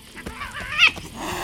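A cat lets out a short, rising snarl-yowl as it leaps to attack a person, moderately loud, over a faint background with no speech.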